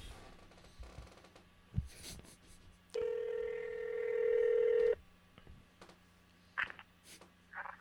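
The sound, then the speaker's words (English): Telephone keypad dialing tones as a phone call is being placed: a steady electronic beep held for about two seconds, followed by a couple of short, quieter blips against faint background noise. “We're calling”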